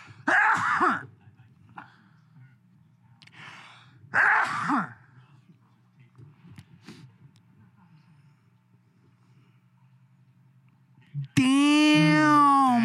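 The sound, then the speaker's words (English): Two sharp, breathy gasping inhales a few seconds apart, then a quiet pause before a loud, voiced sneeze bursts out at the very end. “I have to sneeze.”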